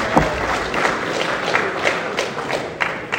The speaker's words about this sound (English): Clap, clap, clap. Give him a round of applause.